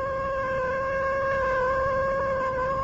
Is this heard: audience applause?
no